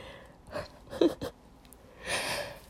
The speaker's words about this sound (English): So. Okay, I'll stop yawning. I'm sorry.